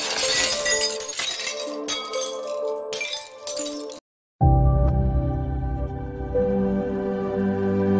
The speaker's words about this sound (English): Rather, it is a matter of attaining the natural frequency of the glass. As a result, all the energy in the sound of the singer's voice is transferred to the glass, and it shatters.